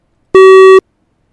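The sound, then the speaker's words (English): A single loud, steady sync beep marking the point to sync playback with a commentary track, lasting about half a second, a flat mid-pitched electronic tone with a buzzy edge, sounding alone with silence before and after. “Otherwise, just sync it up when you hear the beep.”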